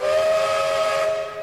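A steam train whistle blows one long, steady note with a breathy hiss layered over it, loud, fading slightly at the very end. No one speaks.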